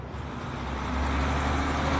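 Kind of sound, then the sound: vehicle, bus arriving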